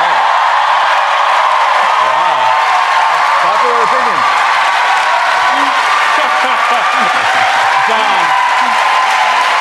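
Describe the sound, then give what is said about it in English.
A crowd in London applauds loudly and steadily for about ten seconds, a dense wash of clapping with scattered voices calling out underneath. “They're obviously applauding because they too believe that the price tag on the new embassy is too high.”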